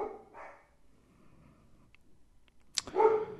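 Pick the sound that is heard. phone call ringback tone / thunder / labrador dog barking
labrador dog barking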